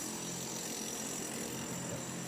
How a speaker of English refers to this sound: A lot of jackhammering here. A lot of jackhammering.